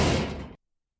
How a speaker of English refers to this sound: Well, I don't think you'll be able to open any of these lock-up garages, no matter how hard you kick the doors. Stop kicking the doors, please,